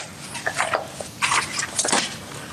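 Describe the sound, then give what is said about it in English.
A few quick papery rustles and flicks, like pages being turned one after another, crisp and moderately loud with short pauses between them and no voices. “And I'm sure we all have an IT system that makes a noise like pages turning.”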